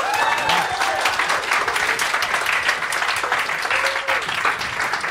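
A crowd of over 50 people at a live event in Melbourne claps steadily, dense, continuous applause that holds at a loud level throughout, with a few faint voices and whoops mixed into the clapping.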